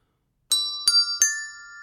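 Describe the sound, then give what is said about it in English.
Three small hand bells from a selection of bells, not Christmas cracker bells, are struck in quick succession, each a bright metallic ding whose high, shimmering tones linger and overlap as they ring out, with no talking. “I've actually got a selection of bells”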